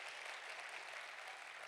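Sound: audience clapping hands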